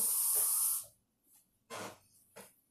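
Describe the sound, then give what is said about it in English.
Water rushes in a steady, hissing stream for under a second as a cup is refilled, then two shorter splashy bursts follow after a pause. No one speaks. “I'm gonna refill with water real quick.”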